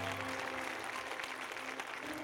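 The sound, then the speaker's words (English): Steady applause from a crowd for JC Watts, a dense continuous patter of many hands clapping at once, with a faint low hum beneath it and no voices standing out. “Clap your hands for JC Watts.”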